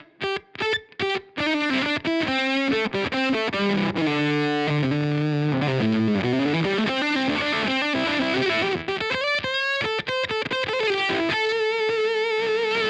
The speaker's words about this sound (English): I'm now using the Maxon SD9 Sonic Distortion along with the Strymon Al Cappy stand. That's using the Marshall setting on the Iridium.